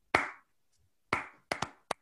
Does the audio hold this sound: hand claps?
yes